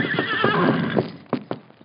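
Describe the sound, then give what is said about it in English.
A horse named Silver whinnies loudly with a long, shaky neigh, then a few sharp hoofbeats thud as it approaches; no one speaks. “He called the horse Silver. Look, he's coming.”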